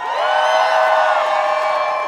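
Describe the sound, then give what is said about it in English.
A loud crowd at a May Day March rally at Harborside Park in St. John's cheers and whoops in a sustained roar, with high shouts and yells layered over a steady wash of voices for a couple of seconds. “All right, make some noise, everyone. Happy May Day, sisters, brothers, comrades. Make some noise.”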